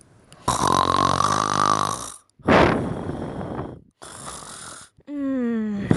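human body sound, loud snoring

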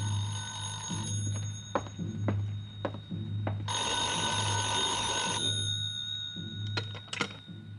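signal or alarm, telephone ringing

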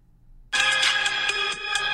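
music

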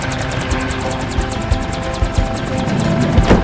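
vehicle, helicopter

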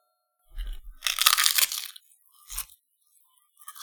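food or drink, crunching

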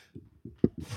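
human body sound, sneeze

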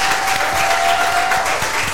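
crowd, audience applause and clapping

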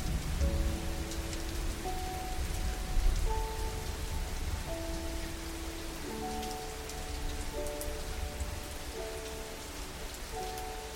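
nature, water running downstream

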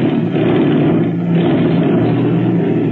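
vehicle, airplane engine running

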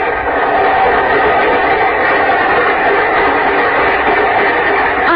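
vehicle, train running on rails

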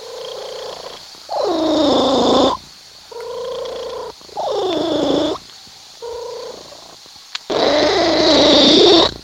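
animal, cat purring loudly

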